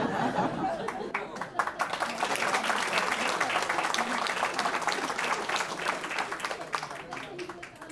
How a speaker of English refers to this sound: You can. I'll give you a round of applause though. Don't worry.